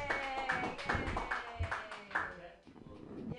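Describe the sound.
A small group in an audience claps for a comedian in a steady, evenly spaced rhythm for several seconds while voices cheer and call out over the applause.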